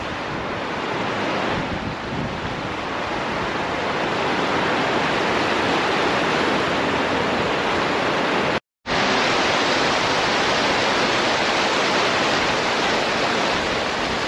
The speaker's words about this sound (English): I'll tell you what, it is windy out here and pretty cold. It's about 30 degrees outside. I would not like to fall into that river. It looks like it's raging pretty hard.